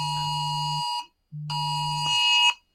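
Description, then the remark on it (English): A phone emergency alert for a missing endangered adult blares in two long, harsh, steady buzzing tones split by a short gap, loud and insistent with no voices over it. “Is that both our phones? Is that my phone?”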